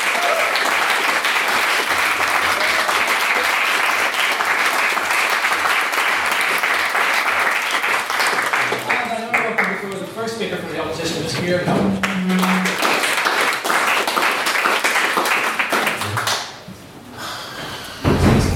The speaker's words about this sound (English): Again, I'd like to give him another round of applause for the main speech. Thank you.